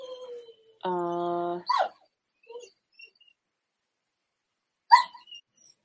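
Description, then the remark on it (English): A dog seeking attention lets out a steady, nasal whine lasting about a second, followed by a couple of short, sharp yips and snuffles, with no one talking. “And our dogs love us. And they're like, no, pay attention to me.”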